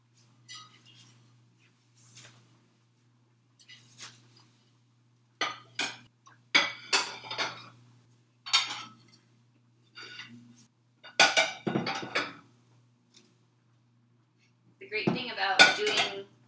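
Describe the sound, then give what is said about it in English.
Dishes and cutlery clink and clatter in irregular bursts as they are washed while mac and cheese cooks, with a short wash of running water near the end and quiet gaps between the knocks. “dishes while you're making mac and cheese is it doesn't feel like you're doing dishes.”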